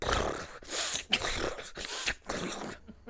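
A pet named Harrison sniffing in loud, breathy bursts, about five rough huffs separated by brief pauses, with no one talking, ending in quiet.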